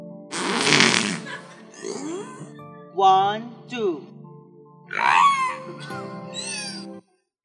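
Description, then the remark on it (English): A string of loud, sputtering fart noises, five or six blasts of varying length and pitch, some rasping and some squeaky, after a voice briefly counts at the start. “So it turns out that teaching the whales how to fart was a mistake.”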